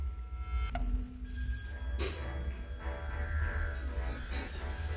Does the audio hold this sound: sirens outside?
no